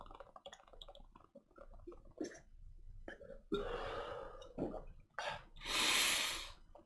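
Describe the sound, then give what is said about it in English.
A loud coughing fit: several harsh, breathy bursts come in an irregular run, the last one long and raspy, after a few softer sputters and throat noises. “Should I cut out all this coughing and shit too?”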